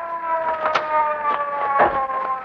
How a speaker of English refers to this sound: Hey, Casey, here comes a police car.